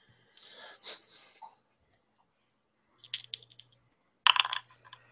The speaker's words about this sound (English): And it has dice rolling sound. That's nice. It does.